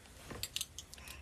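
A few quick, bright metallic jingles from a tambourine, shaken in short irregular bursts. The rattles are faint and crisp, with no voices over them.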